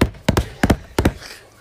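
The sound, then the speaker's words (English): Three heavy footsteps thud on hard ground at a steady walking pace as someone walks over to the Weather Rock, each a loud, blunt double-impact with no talking in between. “What mighty footsteps you have. I know. The ground is so hard here.”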